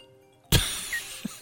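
A bright, sudden phone chime bursts in after a moment of near silence and lingers as a high, shimmering tinkle, with a brief higher note partway through. No one speaks.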